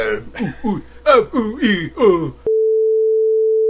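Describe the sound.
A person speaks for a couple of seconds, then the voice cuts off abruptly into a steady, loud, mid-pitched censor bleep tone that holds unchanged for over a second.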